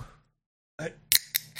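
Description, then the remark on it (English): A can of Diet Coke is cracked open: a brief murmur of voice, then a few sharp, bright metallic clicks and pops from the tab, each short and crisp. “Crack it open a can of Diet Coke here on this.”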